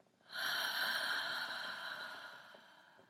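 A long, airy exhale through the mouth during a guided breathing exercise, a steady breathy rush that starts abruptly, holds for about two seconds, then slowly tapers off. It is fairly clear, with no talking.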